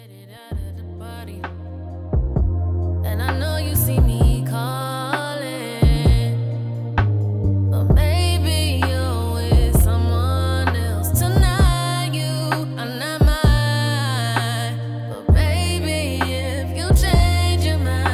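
A smooth R&B song plays loudly and continuously, with deep bass notes, a steady beat and melodic sung vocals running throughout.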